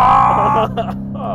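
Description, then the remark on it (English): A single loud voice imitates the revving V8 engine of a Dodge Charger Hellcat, a sustained throaty growl that rises and then breaks into a couple of shorter bursts, about a second and a half long. “And the Hellcat is the same way, and you just listen to it, it's like...”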